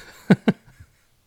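Two quick, sharp, loud coughs in close succession from a tickling throat, followed by a faint throat-clearing rasp and then quiet.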